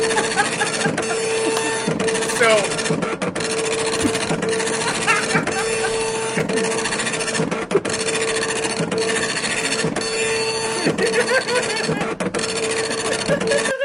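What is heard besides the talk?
dot matrix printer printing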